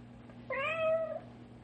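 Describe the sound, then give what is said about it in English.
A single drawn-out meow from a cat stuck down inside a wall, rising then sliding down, muffled, over a steady low background hum. No one speaks. “Instead of standing here glowering at each other, we'd better get the cat out from between the walls.”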